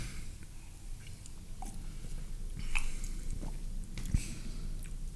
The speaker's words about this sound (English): I'm gonna sip first. Oh, I'm only going to sip. This is... Oh, I'm going to sip and then chug. I'm going to finish this.